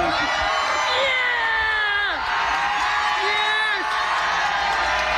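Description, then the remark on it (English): A loud crowd cheers and whoops continuously for a man eating his 40th chicken on the 40th day, with dense overlapping shouts and several rising and falling high-pitched yells standing out above the roar. “Do you want to hear what the crowd sounded like for him eating his 40th chicken on the 40th day?”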